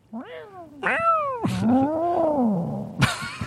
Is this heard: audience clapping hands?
no